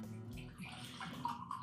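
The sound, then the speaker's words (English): Whiskey pours neat into a glass with a solid base and thin lip in a short, steady stream, splashing, with a faint rising ring near the end as the glass fills. No one speaks. “Pouring it neat.”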